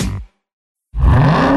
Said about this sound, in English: What do you hear? Most people just hear an engine. We hear a 6.2-liter Hemi V8 with a supercharger that accelerates so fast, it'll suck the air out of your lungs and knock you back in your seat like you're an astronaut in a rocket ship